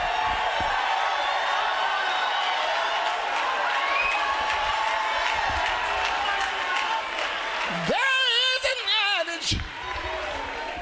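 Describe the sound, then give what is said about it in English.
A large church audience jumps up and roars with sustained cheering and shouting, loud, with a piercing high scream rising and wavering over the crowd near the end. “Let the remnant jump up and scream real quick.”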